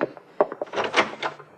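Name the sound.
closet door being opened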